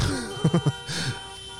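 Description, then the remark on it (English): Three quick horn honks in a rapid burst, then a longer, slightly softer blast over a steady background hum, at a rally in Holland. “Okay, but I'm not listening to them honking horns the whole time.”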